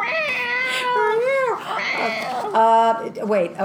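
A cat yowls in long, drawn-out wails that bend up and down in pitch, several cries following one another closely, loud, with one sharp buzzy note near the end.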